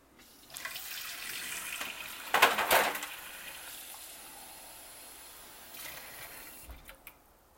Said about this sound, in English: I'll give you a second. I'm gonna fix a glass of water.